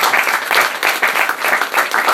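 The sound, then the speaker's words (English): An audience applauds the panelists at the close of an evening panel event, dense overlapping claps forming a loud, continuous wash of sound with slight rhythmic surges throughout. “Can we just give a round of applause to our panelists”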